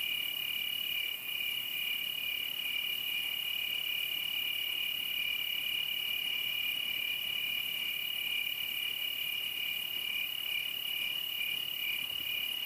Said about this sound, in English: As you listen to the sound of the crickets and gaze up into the stars, where does your mind wander to?